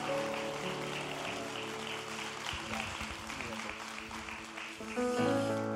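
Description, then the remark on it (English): A church crowd applauds its communicators steadily for several seconds, a dense wash of clapping over sustained instrumental music with low held chords that swells slightly louder near the end. “Could you give our communicators some applause today?”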